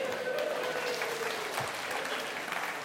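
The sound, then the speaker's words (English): Steady audience applause fills the whole stretch, a dense wash of many hands clapping at an even, fairly loud level, with a faint tone gliding slowly downward underneath. “Don't applaud an F.”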